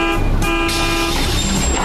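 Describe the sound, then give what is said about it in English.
A bus horn toots loudly and steadily as the vehicle passes, its tone shifting slightly partway through, over a dense rumble of road traffic. “But if you'll wait right here, in just about 2 minutes, the bus to point C will be coming right by.”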